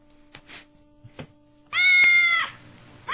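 A cat lets out one loud, drawn-out meow, preceded by a few faint taps and rustles over a low steady hum.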